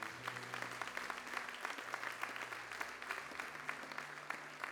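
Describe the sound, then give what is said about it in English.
An audience claps their hands in a sustained burst of applause, dense overlapping claps forming a steady crackling wash, with a low sustained organ-like tone humming underneath. “If you believe that, clap your hands one more time.”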